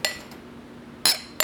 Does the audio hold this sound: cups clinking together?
yes